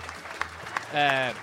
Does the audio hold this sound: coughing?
no